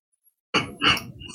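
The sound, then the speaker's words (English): A big, drawn-out yawn from a single person, breaking out abruptly after silence and swelling into a loud, breathy, groaning vocal stretch that trails off near the end. “That was a really big yawn.”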